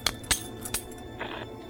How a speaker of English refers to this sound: Nice to know you can pick even locks like that with a hairpin.